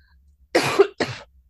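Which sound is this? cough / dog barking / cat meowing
cough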